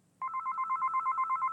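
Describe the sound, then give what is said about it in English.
An iPhone rings with a rapid, trilling electronic warble, steady and fairly loud, starting abruptly and continuing without pause. No one speaks over it. “Your telephone Wait. Interrupting our podcast.”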